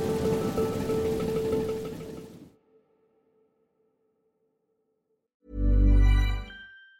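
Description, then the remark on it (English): Heavy rain hisses steadily for a couple of seconds, then cuts to near silence before a loud, deep booming burst near the end. “Today, where has all the rain come from?”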